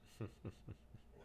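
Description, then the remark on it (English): A dog barks four times in a quick, even rhythm, each bark short and sharp, heard somewhat faintly with no talking over it. “Yeah, this is why you don't get a dog.”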